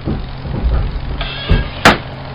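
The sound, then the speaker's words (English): A farmer's tractor engine runs as he moves it into the barn, with a steady, low rumbling drone and a faint whine above it, broken near the end by two sharp mechanical clunks. “Sounds like a tractor.”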